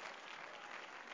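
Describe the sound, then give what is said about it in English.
A church audience claps their hands in praise to the Lord, a dense, steady wash of many overlapping claps that holds an even level throughout the brief moment, with no voices standing out. “Come on, let's give a hand clap of praise unto the Lord.”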